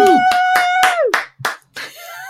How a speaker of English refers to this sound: Cue cheering and clapping.